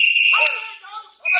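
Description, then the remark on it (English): Shrill police whistles blow in overlapping bursts, a piercing high steady tone joined by slightly lower wavering whistles, then a fresh loud blast at the end. “Hey, listen. Police whistles.”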